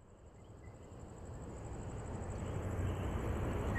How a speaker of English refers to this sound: It's evening in San Juan, and you know it's nighttime from the chirping of the frogs, which you can hear everywhere, but you just can't see.